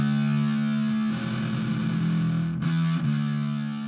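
A heavily distorted, fuzzy bass guitar solo, its fuzz tone caused by faulty equipment at a Nashville recording session in 1959 or 1960, plays a sustained, buzzing line with a couple of brief note changes, loud with no voices.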